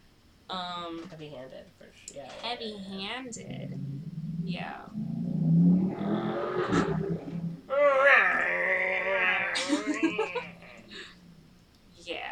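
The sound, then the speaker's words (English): A voice mimics a revving motorcycle with a low, buzzy rumble that swells and falls, broken up by bursts of chuckling and laughter. “That's my impression of a motorcycle.”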